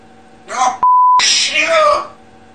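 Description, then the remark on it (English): A parrot repeats an overheard argument in shrill, raspy, voice-like squawking, cut by a flat, steady censor bleep tone before the harsh mimicry resumes. “The parrot just starts over restating just all this.”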